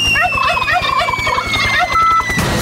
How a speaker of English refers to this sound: Do you guys want to hear the turkey drops? This is fun. We're giving away turkeys, and this is what it sounds like when we give away a turkey.